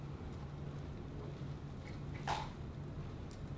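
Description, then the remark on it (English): A single short, wet slurp from someone sipping a drink into a microphone, rising briefly above a steady low hum and faint background hiss. No one speaks. “I'm sure that's making a horrible noise on the microphone, like slurping away.”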